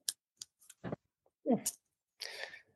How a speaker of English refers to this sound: Have you carried these Japanese scissors? They call them pen scissors. Is that correct? These pen style scissors. You pull the top off, pull the lever back. Can't do it backwards.